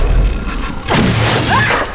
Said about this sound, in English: She can see what's happening a fraction of a second before it actually happens, and she ducks right before the bolt rebounds and smashes against the wall behind her.